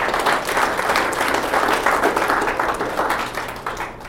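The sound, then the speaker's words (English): A large crowd applauds steadily for the Lord, a dense wash of many hands clapping at once, loud and sustained throughout before tapering slightly at the end. “Come on, give the Lord a good hand today.”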